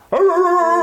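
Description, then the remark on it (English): A person gives one loud, drawn-out bark in imitation of a dog, a steady voiced call lasting nearly a second, with nothing else audible. “We don't bark anymore.”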